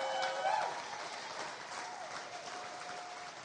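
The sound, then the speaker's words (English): An audience bursts into steady, dense applause, many hands clapping together in a sustained wash that fades only slightly over a few seconds, with a faint high tone briefly heard near the start. “And if you're gonna clap, I think we ought to clap because God's speaking to you right now.”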